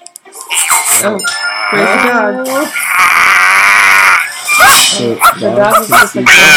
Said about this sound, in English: No more barking at shadows or we'll put you outside.